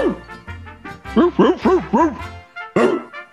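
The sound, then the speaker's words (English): A man's voice mimics a dog barking: a run of four or five quick, loud yappy barks, a brief pause, then one more bark. “You know, if you walk down somebody's like street or neighborhood and you just bark like that, that means that you own the neighborhood.”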